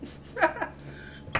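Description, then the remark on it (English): A couple of short, throaty burps, fairly quiet, with a brief pause between them and a last little gulp near the end. No one speaks. “I just needed to burp for you, man.”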